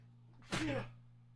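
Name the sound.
sneeze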